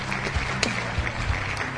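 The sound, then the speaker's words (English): A short burst of applause: steady, dense clapping filling the whole clip at an even level, with a few sharper claps standing out. No one speaks. “Let me give you a well-deserved round of applause.”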